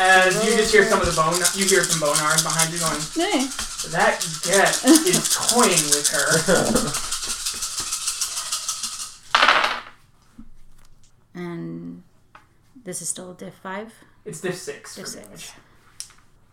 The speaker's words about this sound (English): And she rolls 15 dice.